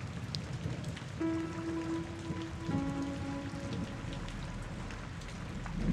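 Steady rain falls in a constant hiss with scattered drops tapping, and a sustained low humming tone briefly rises through it midway before fading. No one speaks.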